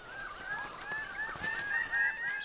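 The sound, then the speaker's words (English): A red grouse calls in a run of quick, nasal, croaking notes that repeat steadily for the whole stretch, fairly quiet, with no one talking. “The red grouse.”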